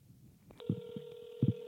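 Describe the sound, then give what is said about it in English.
A telephone line tone starts abruptly and holds steady, with a few low thumps like buttons being pressed while someone dials a prank phone call to New York City. No one speaks. “I want to do my prank phone call.”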